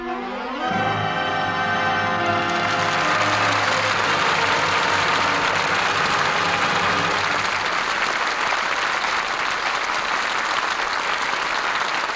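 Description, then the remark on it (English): A studio audience breaks into sustained, dense applause for the cast at the end of a radio play of All My Sons, starring Burt Lancaster, Edward Arnold, Scott Brady and Ann Pierce. The applause stays loud and steady throughout, with a few lingering musical tones fading away beneath the clapping early on. “The curtain falls on All My Sons, and that applause is our thanks to a stellar cast for their really fine performances.”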